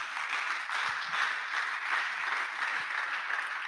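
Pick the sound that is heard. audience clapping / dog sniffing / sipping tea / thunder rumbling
audience clapping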